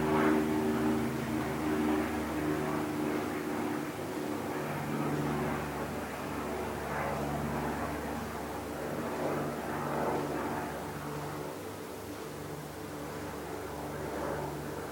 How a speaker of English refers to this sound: And everything you have always experienced, including the plane that flies overhead, and every other experience you still to have.